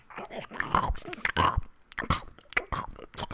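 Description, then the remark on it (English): Loud, wet chewing as a teacher chows down on a burger in class, with irregular smacking bites and squelchy mouth sounds coming in quick bursts, broken by brief pauses. “Yeah, the chewing sounds were actually pretty gross.”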